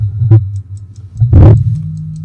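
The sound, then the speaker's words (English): A clock ticks steadily at a quick, even pace, its small clicks light and thin over a low hum, with a couple of louder whooshing bursts cutting in. “Is that ticking?”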